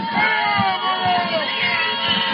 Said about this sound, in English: The home crowd, not happy. They are. That's a good word. Passionate.